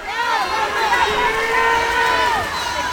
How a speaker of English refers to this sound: They enter the pool, wave to the crowd. As soon as the buzzer sounds, the crowd erupts.